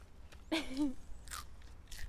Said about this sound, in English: chewing a... eating a snow peas.